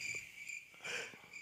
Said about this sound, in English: Are you playing cricket noises over... No, that's actually happening. Weird.